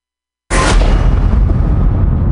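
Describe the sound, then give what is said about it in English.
A sudden crack of thunder bursts out of silence, then rolls into a loud, sustained low rumble that keeps going without fading. “Girl, I hear some thunder.”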